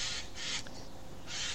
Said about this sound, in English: By the way, I'm outside. You might hear some strange noises around. That's just the birds talking to me. I'm recording outside because I thought I would make a change and record from outside to have some interesting background noises.